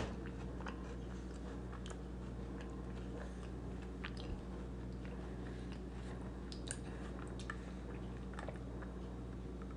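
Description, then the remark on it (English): Someone chewing a couple of mint Oreo cookies, with soft irregular crunches and moist clicks scattered over a steady low hum. The chewing is quiet and no one speaks. “Just a couple of mint Oreo cookies.”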